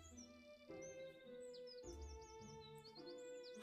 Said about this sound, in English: We will get some nice little fun ambiance here. Bring that down because I don't need to listen to chirpy chirpy birds as loud as possible.